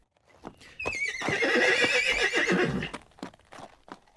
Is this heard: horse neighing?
yes